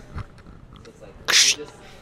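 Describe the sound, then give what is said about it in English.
A person vocally imitates paper ripping with one short, harsh, hissy burst of breath, fairly loud, surrounded by quiet room noise. “Do the paper rip sound effect.”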